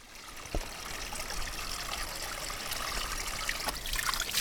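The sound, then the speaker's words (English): Water pours out of a bottle in a steady, quiet trickle for a few seconds as bottles are cleaned out in the desert, with a couple of small knocks, and no one speaking. “It feels really wasteful to, clean out these bottles and pour the water because I live in the desert.”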